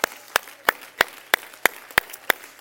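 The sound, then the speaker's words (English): An audience claps hands together to praise the Lord in a steady, brisk rhythm, about three sharp claps per second, crisp with no voices. “Somebody clap your hand to the Lord and let's praise Him.”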